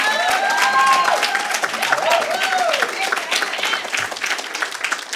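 round of applause

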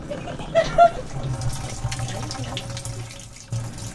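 person urinating

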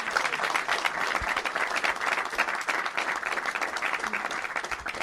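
audience round of applause

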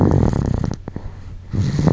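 snoring

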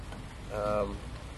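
rain falling

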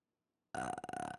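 forced burp

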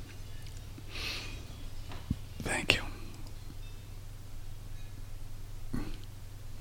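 hiccups

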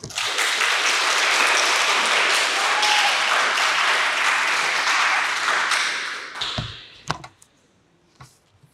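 audience applause

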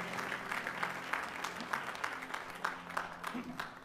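audience applauding the band

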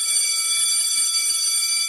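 school bell ringing

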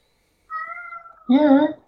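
cat meowing

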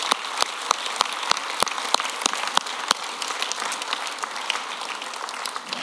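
audience clapping hands

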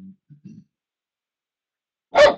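dog barking

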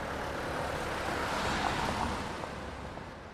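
city street traffic

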